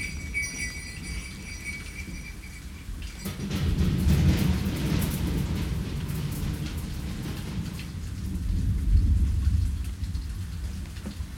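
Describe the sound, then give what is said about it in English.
Steady rain pours down in a dense, hissing wash, with deep low rumbles swelling through the middle like thunder. No voices are heard. “Hey you, it's raining.”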